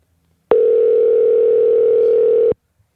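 A steady, continuous telephone dial tone sounds loud and close for about two seconds, starting and stopping abruptly, with no talking over it.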